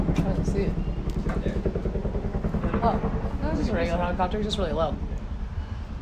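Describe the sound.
A military helicopter drones loudly overhead, its steady low rotor thrum running the whole time while people talk over the noise.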